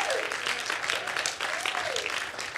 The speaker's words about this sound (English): Can we give the band just a round of applause for serving us?